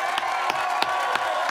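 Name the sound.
round of applause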